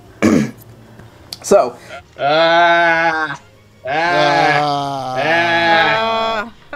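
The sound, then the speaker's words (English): After a couple of short throaty grunts, two long, wavering sheep bleats sound loud, the second stretched out and quivering, with no talking around them. “Who let the sheep out?”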